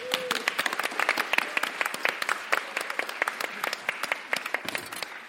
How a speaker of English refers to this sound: So I'd like to introduce science demo superstar and former Naked Scientist who's going to put the boom in this show. Please give a round of applause for Dave Ansell.